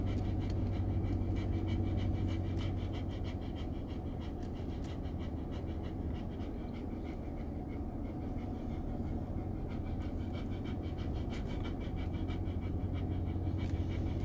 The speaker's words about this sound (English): And the dogs will be panting like Momi's doing behind me right now. They'll be panting at the door, looking at us, saying, "Hey, Daddy, Mommy, kids, my friends, you're our life. You know, please come back."